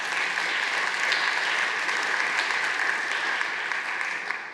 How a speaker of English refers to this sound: Let us give the Lord a hand clap of praise.